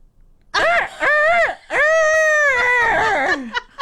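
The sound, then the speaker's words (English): A human voice does a loud, strained imitation of a rooster crowing, broken into three wavering, high-pitched phrases with a rising and falling contour and a raspy, croaky edge. It is a first attempt at the imitation. “That sounds like a dying rooster.”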